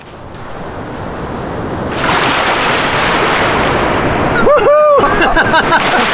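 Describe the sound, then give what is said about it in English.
Ocean surf washes and splashes continuously, growing louder partway through, as people run into the sea and splash, with a person's brief high-pitched cry rising over the churning water near the end. “Oh, you're gonna splash me?”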